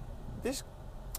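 A short, squeaky, gliding vocal sound with a hissy edge, a person imitating their car's worn, slightly rusty brake pads squealing when stopping, then a brief hiss, over a faint low rumble.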